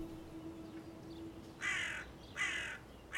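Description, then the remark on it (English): Crows caw in three harsh, raspy calls spaced nearly evenly apart, loud against a quiet background with a faint low hum beforehand. “In the silence, the crows began cawing again.”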